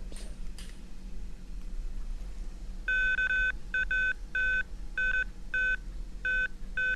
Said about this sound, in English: And then you'll hear the beeping, which is the ground penetrating radar indicating that it has found a positive response.